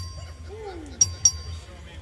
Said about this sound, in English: But Mr. Anchia requests a record vote to the amendment as amendment. The clerk will ring the bell.